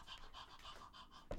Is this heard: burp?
no